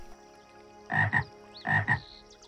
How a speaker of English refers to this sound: Some critters are all sleepy and they're winding down for the night, but some are just starting their almighty chorus for the night. Can you hear Mr. Frog?